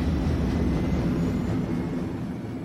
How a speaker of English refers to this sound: Doug and the others boarded the train and blasted off into space.